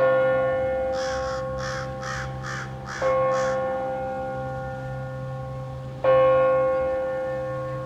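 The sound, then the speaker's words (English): A large crow caws six times in a quick, evenly spaced burst, harsh, from about 20 feet away, sitting on top of a spot where it is fed, while a resonant bell tolls slowly in the background with long ringing decays. “So while you've been talking, the big giant crow had showed up and it's sitting about 20 feet away on top of a place that's I feed it.”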